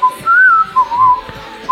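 A person whistles a short, bouncy tune up close, the pure tone sliding between notes in quick phrases with brief gaps, alone without any talking.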